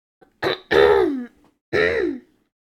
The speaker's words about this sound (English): Let me clear my throat first.